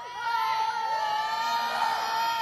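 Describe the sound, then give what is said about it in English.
A group of children, asked to demonstrate shouting during a lesson on a psalm, shouts together in a loud, sustained burst of high-pitched voices, overlapping cries and yells that hold steady for a couple of seconds without any clear words. “So in this verse, the psalm writer is talking about shouting, right? You guys know what shouting is? Can you demonstrate?”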